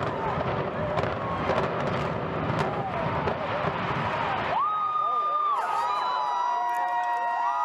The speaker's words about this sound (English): I don't know why they're cheering.